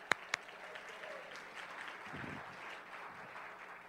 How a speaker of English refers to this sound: Okay, give the guys up there a round of applause.